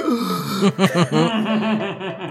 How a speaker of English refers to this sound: but the gasps in the theater are completely genuine.